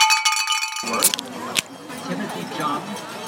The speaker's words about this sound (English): And then you opened a beer. And then that was a sound.